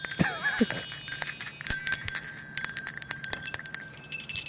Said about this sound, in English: That's my little bell. Ring my bell. We barely hear it.